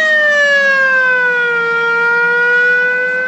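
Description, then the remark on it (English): A bowed gong, its pitch drawn up and down with a DAW's elastic pitch changer, rings in one steady, loud, shimmering tone with bright overtones, its pitch sliding slowly downward and then creeping back up, almost like a siren. No one speaks. “So that's bowed gong.”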